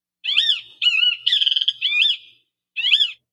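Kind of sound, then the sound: bird, kiskadee call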